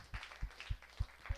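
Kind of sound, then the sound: crowd, audience clapping hands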